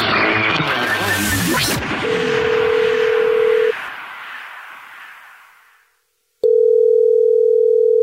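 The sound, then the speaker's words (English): A telephone call from The Jubal Show to a listener who texted in goes through: a noisy burst with a dialing tone fades out, and after a short silence a loud, steady ringing tone sounds. No one speaks. “So it's the Jubal Show, and we're calling you back to ask you, what's your dirty little secret?”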